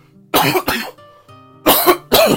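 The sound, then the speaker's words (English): Four harsh, wet coughs in two close pairs, loud, with a faint low hum between them and no talking: the lingering cough of someone who has just got over pneumonia. “One, I just got over pneumonia, so I have a tad bit of a lingering cough. Let me cough right now.”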